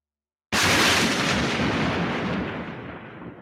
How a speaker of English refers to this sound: You're late on the thunder there, aren't you?